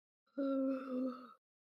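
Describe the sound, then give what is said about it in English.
A single dramatic gasp, drawn out into a loud, voiced, steady-pitched cry lasting about a second before cutting off, heard on its own with no talking. “Yeah, That was my dramatic gasp.”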